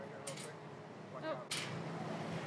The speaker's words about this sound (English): This car is going to park right here. We're in a parking lot.